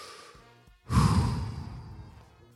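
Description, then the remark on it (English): A single long, deep breath: a quieter intake, then a loud, broad, airy exhale like a heavy sigh that slowly fades. No one speaks. “Take a big deep breath with me.”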